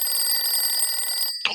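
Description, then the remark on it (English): Sheriff Labrador's telephone rings with an emergency call from Mr. Buffalo: a steady, high-pitched trill that holds for over a second, stops abruptly, then gives a short sharp clatter, as if the receiver is picked up. “One evening, Sheriff Labrador received an emergency call from Mr. Buffalo.”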